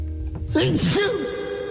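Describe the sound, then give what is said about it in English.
A single stifled sneeze, a short voiced burst with a breathy rush, over a steady low background hum. “I'm going to sneeze.”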